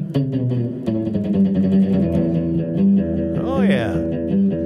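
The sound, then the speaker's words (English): A reverb-drenched surf guitar riff rings out with twangy sustained notes and a swooping, bending flourish near the end, while a voice briefly chimes in over the playing. “Surf music.”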